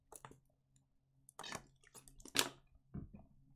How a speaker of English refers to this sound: My bad, y'all gotta get another sip of water.